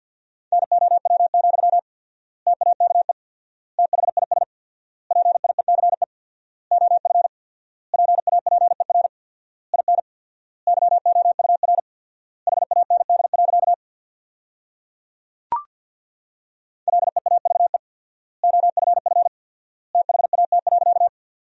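Fast Morse code at about 50 words per minute with four-times word spacing, sending sentences built from the top 400 words: a steady mid-pitched tone keyed in rapid dots and dashes, grouped into short bursts with clear pauses between words, plus one sharp click partway through.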